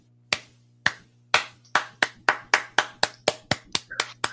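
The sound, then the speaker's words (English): A person imitates continuous clapping: a series of sharp hand claps, a couple spaced out at first, then speeding into a steady, rapid run of about a dozen more, over a faint low hum. “It just continuously clapped.”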